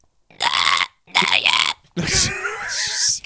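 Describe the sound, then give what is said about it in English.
A person's voice imitates whale song: three loud, drawn-out moaning calls with shifting pitch, the second dipping and rising, the last longer and rougher, with brief silences between. “I'm trying to do a whale song with that voice.”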